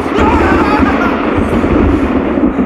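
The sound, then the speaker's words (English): A heavy, continuous rumble of thunder during a storm rolls on without pause, loud and deep with a dense roar over it and no voices. “Dude, you know I'm afraid of storms.”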